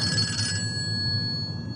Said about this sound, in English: The phone ringing now.